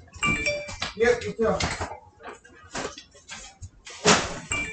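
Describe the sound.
A phone notification chime rings out in short bright tones near the start, mixed in with people talking and some clattering household sounds.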